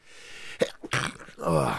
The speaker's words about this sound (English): Bless you. Gonna sneeze. Did you have to get a Kleenex or something?